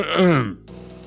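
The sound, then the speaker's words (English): A single loud throat clearing with a voiced, groaning quality that drops in pitch, lasting about half a second before fading into quiet background tones. “Sorry, I had to clear my throat.”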